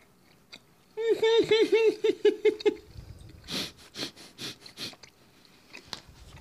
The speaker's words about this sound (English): Oh, it takes so long to chew.